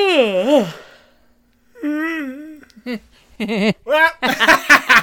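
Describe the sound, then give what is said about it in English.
A man's drawn-out yawning groan cuts off abruptly as someone sticks a finger in his mouth, followed by muffled, wavering vocal sounds and then a burst of breathy laughter. “I stuck my finger in his mouth while he was yawning.”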